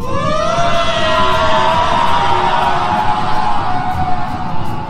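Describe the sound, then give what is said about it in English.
A voice imitates the furious scream of the monster Vliklok Lore, whose scream travels through the water: one loud, sustained, rasping howl that rises in pitch and holds at full strength for about five seconds, harsh and noisy throughout, with no talking. “You feel it in your brain, as well as you actually feel the waves of her scream as it travels through the water, and it's rage and hatred and fury.”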